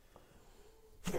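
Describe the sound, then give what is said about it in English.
A sudden, loud sneeze bursts out at the very end after a stretch of near silence, sharp, and is cut off abruptly. “And then bless you.”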